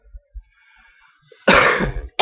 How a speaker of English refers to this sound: I'm almost over my cold. This is, like, the last niggling little cough.